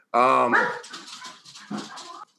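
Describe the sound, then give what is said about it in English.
A dog named Red barks loudly, starting with a long, drawn-out bark followed by a few rougher, shorter barks and whining sounds that fade out. “On that end, he barks.”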